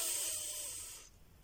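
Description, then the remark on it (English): A steady, airy hiss of a slow, deep inhalation, taken as part of a breathing meditation exercise, lasts about a second, then fades out abruptly into quiet. No voices accompany it. “So, a way that you can get yourself into becoming more and more present is by breathing slowly and doing breath techniques or breathing meditations. Inhalation.”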